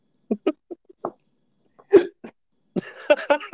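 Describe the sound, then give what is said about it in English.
A quick run of small hiccups in an uneven rhythm, then a louder, sharper hiccup, followed by a stretch of voiced, laugh-like vocal sounds. “You can't get a sentence out without hiccuping, and then sighing at your hiccup.”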